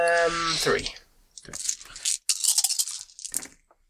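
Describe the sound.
A brief voice at the start, then a burst of loud clattering and clicking as several purple dice rattle and tumble across a hard surface for a couple of seconds.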